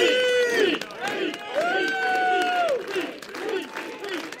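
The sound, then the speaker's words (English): An outdoor overflow crowd of at least 100 people outside a venue in New Hampshire cheers and whoops loudly as Mayor Pete, standing on a bench, revs them up, with sustained shouts and chanting rising over a dense, continuous roar of voices, some clapping scattered throughout. “So Mayor Pete stood on a bench outside and revved up the crowd.”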